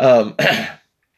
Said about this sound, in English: Honey, is there any way you could pass me something to drink? I'm totally like coughing in here.